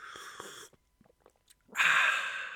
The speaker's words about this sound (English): Because I'm sitting here sipping a coffee on a Sunday afternoon that I made in my own home with no assistance that contains Starbucks eggnog mix. Hear the slurp. Here it comes.